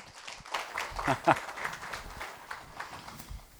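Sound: audience clapping in welcome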